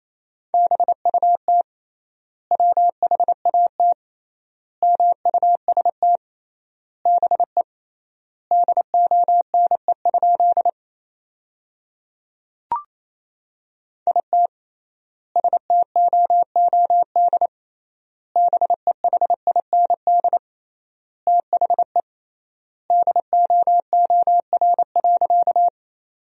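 Rapid Morse code in a single steady mid-pitched tone, dots and dashes keyed in tight clusters separated by short pauses, with one brief click partway through and no voices. Sent at 28 words per minute with triple word spacing, keying sentences built from the top 500 words.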